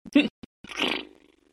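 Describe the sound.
Someone vocally imitates a toilet flushing: a short throaty burst and a brief click, then a longer, breathy whooshing rush that swells and gradually drains away into quiet. Fairly loud.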